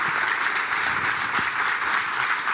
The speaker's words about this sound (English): Okay. Not everybody is applauding right now, okay?